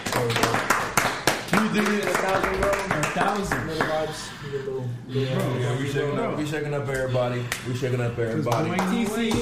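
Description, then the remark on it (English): Several people clap their hands to celebrate reaching 1,000 listens, in a quick, uneven burst, loudest in the first couple of seconds, while voices whoop and laugh over the top and scattered claps carry on beneath them. “Hey, clap it up.”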